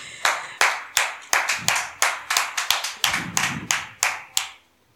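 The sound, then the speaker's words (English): Brief, sparse applause for a reverend: a handful of sharp, distinct hand claps in an uneven rhythm for about four and a half seconds, clear, then stopping abruptly with no talking over it. “Let's clap for”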